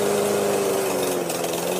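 A lawnmower engine drones steadily as it mows a lawn, a loud, buzzy motor hum holding an even pitch for the whole short stretch, with no voices.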